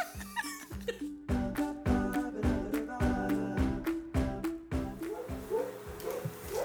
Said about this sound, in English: I'm going to bring them in. Can I bring them in? Yeah. Can y'all hear our dogs right now? They are wreaking havoc in the background.